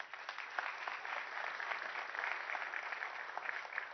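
audience applause

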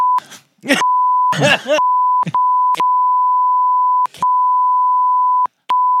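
censor bleep tone

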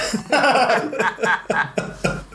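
coughing

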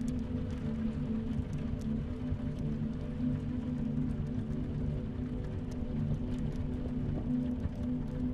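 rain falling

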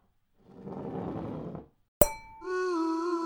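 glasses clinking

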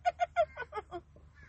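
birds calling outside

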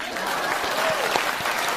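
audience applause

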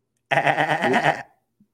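goat bleating

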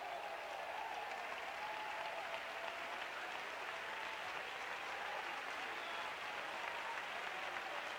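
audience clapping hands

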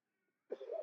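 cough

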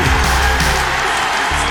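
arena crowd cheering

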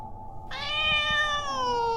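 cat meowing

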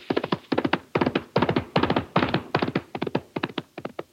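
horse hooves approaching

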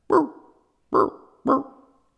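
dogs barking

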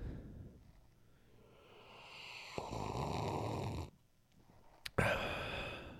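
sipping a drink

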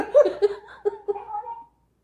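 cat meowing

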